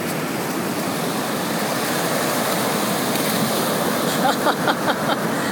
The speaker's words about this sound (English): After that, we ended up at the beach, the Pacific Ocean, which I had never been to before, so I decided to not let that opportunity go to waste.